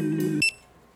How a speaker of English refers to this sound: I can never leave the sleeper station. So I just stand there and slowly lose my mind, waiting for beeps as if they're drops from a Chinese water torture.